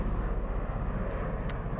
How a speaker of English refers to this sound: There are there is a fucking plane driving across, flying across.